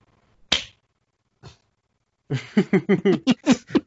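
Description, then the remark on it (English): One loud, sharp hand clap marking the start of a recording take rings out, followed by a faint soft tap and a pause, then a run of rhythmic, pulsing laughter. “the big ass clap, and then we're gonna just go.”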